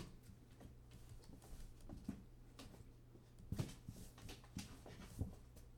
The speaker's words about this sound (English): You got hiccups. Did you scare yourself with your bark? Is that what happened? Why you got hiccups?